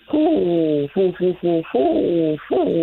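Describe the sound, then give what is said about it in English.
A person imitates a great horned owl with a loud series of six low hoots: a long one, three short quick ones, then two more drawn-out hoots. “Yeah, it's great horn now.”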